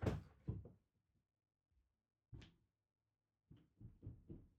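Muffled knocking on a door: a few dull thumps, a pause, a single heavier bang, then another quick run of four knocks. Fairly faint, with no voices.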